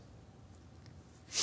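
Near-silence gives way to a single sudden, harsh cough bursting out loud right at the end, cut off abruptly.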